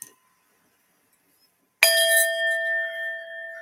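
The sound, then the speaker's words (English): After a moment of silence, a Tibetan singing bowl is struck once, its bright, clear metallic tone ringing out with layered overtones that hum and slowly fade. “I also have a Tibetan bowl here we can do.”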